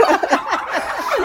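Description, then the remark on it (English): A turkey gobbles, a rapid, warbling burst of descending yelps that rattles on for just over a second with no talking over it. “So this year has been really good for us because the weather has been really good for the turkeys in general.”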